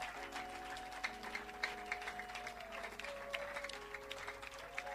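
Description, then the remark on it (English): An audience clapping hands for the Holy Spirit in praise of God, in a steady, dense patter of many claps, with sustained musical tones holding underneath throughout. No one speaks. “the way you are clapping is no good”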